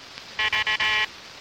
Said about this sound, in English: Then, right on time, a message in Morse code.